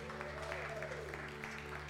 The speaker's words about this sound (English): Good news coming up for us. Fellowship kids, let's give them a hand clap round of applause.